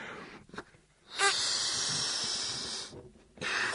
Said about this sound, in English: Now, I want you to blow it up so it just starts to inflate.